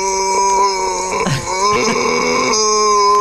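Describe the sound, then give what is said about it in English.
A person imitates a revving motorcycle engine with a loud, buzzing voice, holding a steady droning pitch that briefly drops and sputters midway before climbing back and rising again. “Is that a motor? No, it's him. Is it a Honda spinning up?”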